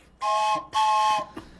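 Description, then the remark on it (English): Two long, loud train-style whistle blasts, each about half a second, with steady chord-like tones and a breathy hiss, followed by a brief faint toot. “we got a little follow-up junction. Blow the whistle.”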